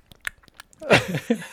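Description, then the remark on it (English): A person imitates open-mouthed gum chewing: a quick run of soft, wet smacking clicks, followed by a louder, drawn-out voiced mouth noise with sloppy chewing sounds. “People chewing gum with their mouth open kind of bothers me, but...”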